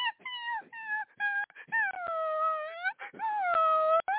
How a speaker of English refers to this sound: I'm telling you, we had somebody down in Studio B that had a little puppy, and he would not stop whining.